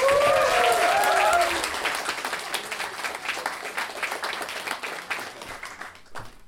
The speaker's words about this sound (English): Anyway. Can we have a big round of applause, please? Welcome to the stage,